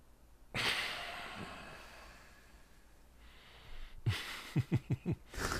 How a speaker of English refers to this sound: Me, what I like to do a lot is... hold the breath.